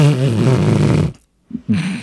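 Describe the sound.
A loud fart-like noise, probably a mouth imitation: one buzzy, blubbering blast lasting about a second, then a brief silence and a couple of short, low voiced sounds.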